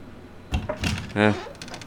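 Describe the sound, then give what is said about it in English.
A door opens: a couple of short knocking clicks from the latch and handle, then a brief, tonal creak as it swings, with faint background noise around it. “I'll grab the door.”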